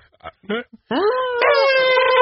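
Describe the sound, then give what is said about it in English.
A person trumpets like an elephant in a long, strained, wailing blast with rising and falling pitch, after a few short breathy vocal sounds. “Do an elephant sound for me.”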